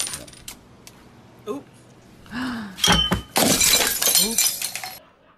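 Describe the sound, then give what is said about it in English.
A dense, bright jingle of many coins of change spilling and clattering across a counter for about two seconds after being shoved aggressively toward a customer buying beers, with a sharp rattle at the start and voices murmuring around it. “She put it on the counter and then shoved it aggressively so it's the change spilled”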